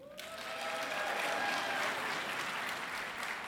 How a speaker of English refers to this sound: Here at Crown Point, we're clapping. All right. And the balcony people are clapping.